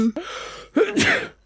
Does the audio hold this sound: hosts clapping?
no